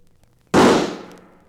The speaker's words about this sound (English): That's a nice shooting, Ralph. That hawk is dropping like a rock.